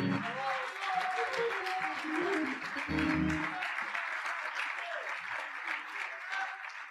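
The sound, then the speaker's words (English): An audience gives God a sustained round of applause, dense steady clapping with some cheering voices mixed in, holding at a fairly even loudness for several seconds. “Come on, somebody give God a round of applause.”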